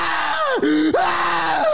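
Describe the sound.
A loud, strained voice imitates agonized screaming, a sustained wailing cry with two sharp downward swoops in pitch, unbroken for under two seconds.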